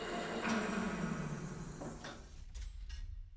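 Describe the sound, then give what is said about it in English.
An airlock slides out from a facility to connect with a landed craft's doors, extending with a low grinding hum, followed by a few sharp metallic clunks as it locks into place, fairly loud. “An airlock slid out to connect with our doors.”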